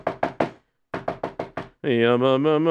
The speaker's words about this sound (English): And one day, the Rav was sitting at his study learning. And suddenly there was a knock on the door.